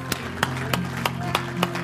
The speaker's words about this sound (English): Give the Lord a hand clap and a shout of praise. Hallelujah.